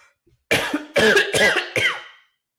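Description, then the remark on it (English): A person fakes a fit of coughing: four harsh, forced bursts in quick succession, loud, with a raspy throaty edge and no talking around them. “I actually perfected fake coughing in elementary school just to get a cough drop.”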